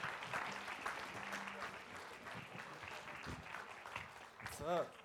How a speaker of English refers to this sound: Would you guys give him a round of applause as he comes up on stage?